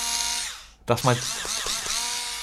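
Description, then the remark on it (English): Someone mimics a power drill with their voice: a steady, buzzing whine, then a short break and a rising vocal sweep before the whirring drone starts up again. “That's my best impression, a drill.”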